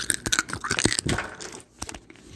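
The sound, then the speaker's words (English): A dense, brittle crunching of Bigfoot's bones during a fight with the Vicious Butcher, with sharp snaps and cracks packed close together, loud, like bones being broken, trailing off into a few scattered cracks. “All of a sudden, Bigfoot feels a sharp pain go through him and a crunch.”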